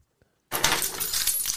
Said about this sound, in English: I said, they're locking everything. Can I please have a brush? They had to come and get the keys, jingle, jingle, jingle